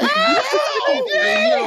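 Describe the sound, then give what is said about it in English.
A man screams at full volume, a strained, high-pitched yell that wavers up and down without pause. It is intense and wordless, lasting a couple of seconds. “screaming like his life on the line.”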